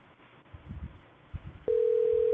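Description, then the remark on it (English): A steady, single-pitched phone ringback tone of an outgoing call placed to connect a woman on air begins near the end and holds at an even level, following a few soft low thumps and quiet background noise. “And it's ringing.”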